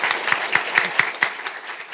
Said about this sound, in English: Please join me in a round of applause for our panelists.